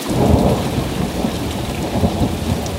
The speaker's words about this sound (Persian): آسمان رشت مثل بسیاری از روزهای سال ابری و بارونی بود. معمولاً در این شب‌های طولانی و خیس پاییزی کار زیادی نمی‌شد انجام داد.